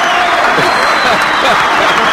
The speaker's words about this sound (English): Don't make me start over. Then clap.